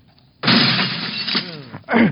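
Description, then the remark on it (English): A stained glass window, punched out by Tesla, shatters with a loud, sudden crash, followed by a spray of tinkling shards and a second burst of falling glass. “Finding no logical or scientific method of entry from the outside, Tesla punches out the stained glass window.”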